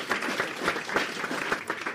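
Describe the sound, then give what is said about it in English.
A short burst of applause from a group, dense overlapping claps at a steady moderate level with no voices. “Round of applause.”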